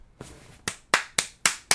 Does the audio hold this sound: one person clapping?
yes